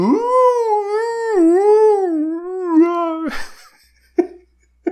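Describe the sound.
A person imitates whale song with one long, sliding, moaning tone held for about three seconds, then a breathy rush of air and two brief, soft vocal bursts.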